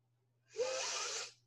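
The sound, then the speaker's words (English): One long sniff of frankincense essential oil through the nose, an airy inhale lasting under a second and rising sharply before tapering off, over a faint steady electrical hum. No one speaks. “I always like to sniff some of my frankincense.”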